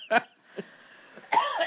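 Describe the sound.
A man coughs in a few short, harsh bursts, close to the microphone, with brief pauses between them, followed by a rougher voiced sound that could be more coughing or the start of talk.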